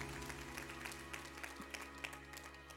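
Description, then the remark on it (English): An audience claps their hands in praise to the Lord, a steady, dense patter of applause with a low hum beneath it. “Come on, y'all give the Lord a hand clap of praise.”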